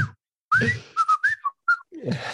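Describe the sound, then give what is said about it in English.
A circus performer whistles a short signal call to communicate instead of talking: a rising note followed by several quick chirping tones in a choppy rhythm, with brief voiced sounds at the start and end. “And sometimes we can whistle. Like I'll go.”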